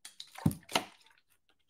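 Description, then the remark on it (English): A quiet slurp of sparkling water: a soft wet gulp, then a brighter hissing sip, fading into faint carbonation crackle. No one speaks. “Hold on, let me get a sip of water.”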